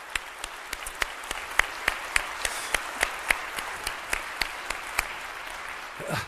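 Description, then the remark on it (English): An audience claps together in steady unison, about twenty crisp, evenly spaced claps over a soft background wash of applause, before a short voice sound at the very end. “We all clap together because there's nothing more exciting than a changed life.”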